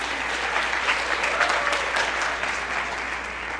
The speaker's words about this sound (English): And so I have to thank them immensely. So give a round of applause, please.